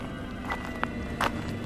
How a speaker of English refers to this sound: Footsteps broke through the silence of the night.